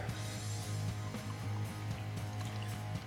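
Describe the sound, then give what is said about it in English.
A carbonated drink of 6% alcohol by volume being poured steadily from a bottle into a glass, a continuous fizz and gurgle lasting a few seconds, with a low hum underneath and no talking. “Okay, I just got a whiff as I'm pouring this.”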